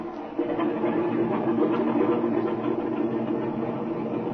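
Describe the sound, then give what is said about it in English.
An airplane engine kicks in and revs up to a loud, steady roar with a droning hum during an engine run-up on the ground before takeoff, holding at full power without easing off. No voices are heard. “Oh, by the way, I want to run up the engine again before we take off.”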